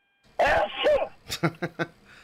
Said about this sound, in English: You never know what's going to happen. Like sneezes.